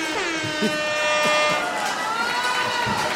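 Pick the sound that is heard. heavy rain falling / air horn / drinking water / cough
air horn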